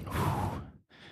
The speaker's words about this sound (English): And now that you guys are ready, we're going to take one big deep breath. All right. Three, two, one, all the way in. Hold it for half a second and let it all out.